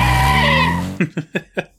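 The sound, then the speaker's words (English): Car tires squeal loudly over a revving engine for just under a second as the driver slams his foot on the gas and the car peels away. The sound then cuts off into four short, evenly spaced shouted bursts from a passenger yelling at the driver. “And they argue about this for a little bit until Eddie just slams his foot down on the gas and the car peels away with … yelling, "Get your foot off me!"”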